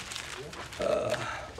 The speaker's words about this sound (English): You hear the pages turning.